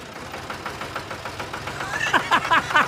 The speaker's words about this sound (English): Tractor. Have I told you the tractor story? It's a wonderful story. Have we got a tractor in the house? Here it is.